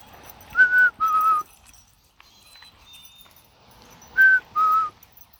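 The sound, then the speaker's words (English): A person whistles to a pet bird, playing with it: a loud two-note call, a higher note falling to a slightly lower one, then repeats it after a pause. Faint, thin high tones are heard in the quiet gap. “I'm just playing with the bird. I think I'm pissing him off.”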